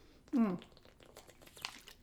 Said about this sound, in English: Sorry, had to take a drink of water. You're going to hear that on the microphone.